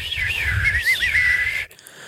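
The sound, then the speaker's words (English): A breathy, raspy human whistle wavers up and down in pitch for about a second and a half, airy, over a low rumbling hiss, then cuts off abruptly. “I don't whistle the correct way.”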